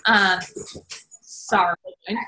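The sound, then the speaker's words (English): A dog whimpers in short, high, whiny bursts, one at the start and another a moment later, fairly loud, with softer muffled sounds in between. “Sorry, is our dog losing our is mine? He's probably gonna come back here in a second.”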